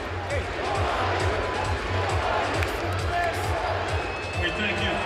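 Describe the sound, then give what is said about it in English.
A basketball arena crowd of BYU fans at the Moda Center cheers and applauds the BYU Cougars after their 81–49 win over Oregon, a steady, loud roar of mixed voices and clapping that holds throughout, with a low rhythmic thump underneath. “The BYU fans in the stands stand and applaud the efforts of the Royal Clad Cougs tonight, and the Cougs applaud right back to the fans in the stands.”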